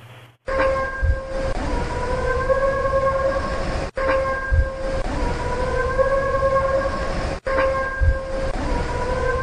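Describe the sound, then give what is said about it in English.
An animal imitates a car horn: a loud, drawn-out, reedy honk with a slight upward bend. It repeats three times in a row over a low background rumble, with no talking. “This is the car horn with mimic.”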